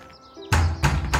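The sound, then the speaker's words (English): Three heavy, loud knocks from a large iron door knocker on a gatehouse door, struck in a steady rhythm, each ringing out briefly, with faint birdsong in the background before the first strike. “Approaching the gatehouse, there's a large iron knocker.”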